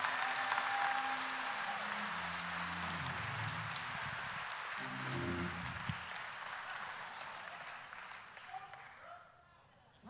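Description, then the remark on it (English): An audience claps steadily in a dense, sustained wash of applause for about nine seconds, with low murmuring or tones beneath it, before the clapping quickly tapers off. “Oh, come on, you can clap better than that.”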